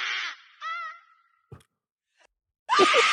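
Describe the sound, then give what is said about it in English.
A short, hokey scream sound effect: a breathy cry, a wavering high-pitched wail, a brief thud, then a loud harsh burst of noise at the end, with no talking. “That's the worst sound effect. That was a really bad scream.”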